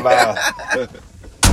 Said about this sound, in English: A bee flew in on us. Shit, boy, you about to tear that truck door up to get up out this motherfucker for a bee.